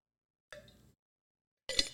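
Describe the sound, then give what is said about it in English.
Two clinks of a glass or water bottle as someone drinks chilled water, separated by a second of silence. The first rings briefly with a faint tonal hum, and the second is sharper and brighter. No one speaks. “I want you to pause the podcast, grab yourself a nice glass of chill water and chug it.”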